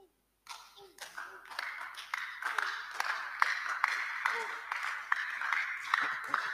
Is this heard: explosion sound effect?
no